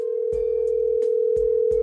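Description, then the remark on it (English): A steady, unbroken telephone dial tone hums loudly for the whole stretch as a phone call is being placed, with a few dull thumps and clicks breaking in over it, like the phone being handled. “We'll call her right now and let her know what's happening, okay?”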